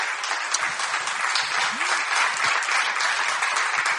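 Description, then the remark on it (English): A crowd claps hands as a hand clap of praise to God, in dense, steady applause for several seconds, loud and continuous with no clear rhythm, with a faint voice briefly audible underneath. “Just give God a good hand clap of praise.”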